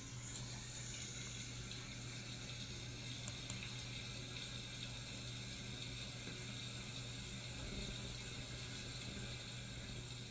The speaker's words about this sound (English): Okay, finally I found a shower sound effect that's royalty-free. And it actually sounds like a really pleasing shower. Hear this.